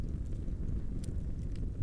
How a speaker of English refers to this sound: All that could be heard was the sound of the horses' hooves against the cobbles and their shared laughter.